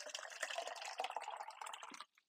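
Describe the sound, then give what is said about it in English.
Water is poured to drink in a steady, splashy stream for about two seconds, then cuts off abruptly. Fairly quiet, with no voices. “I'm going to get some water here.”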